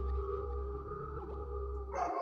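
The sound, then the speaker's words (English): A steady electronic drone hums along until a dog lets out a single sharp bark right at the end. No one speaks. “That dog fucked me up!”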